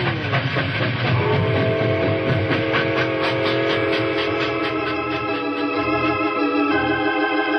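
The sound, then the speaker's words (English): A locomotive pulls away, loud and steady, its rhythmic chugging and rumbling wheels under a sustained whistle-like tone, with no voices. “A locomotive can outrun a horse any day. We'll be down the hill and gone before they can get started.”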